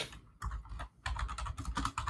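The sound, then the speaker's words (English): Rapid clattering keystrokes on a computer keyboard, fairly loud, coming in two quick bursts separated by a brief pause, with no talking. “To the keyboard.”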